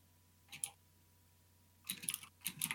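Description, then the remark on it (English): Bursts of quick typing on a computer keyboard, a short flurry of key clicks followed after a pause by two denser clusters of rapid tapping, fairly quiet against a low steady hum. “Hey, stop typing. I'm messaging on Discord.”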